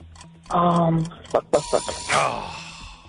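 A timer being wound, with a brief buzzing tone followed by a handful of sharp, uneven ratcheting clicks and a rushing, bright whoosh that fades out.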